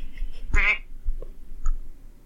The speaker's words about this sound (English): What the fuck was that? Did I make that noise? Did you hear that? It sounded like a duck.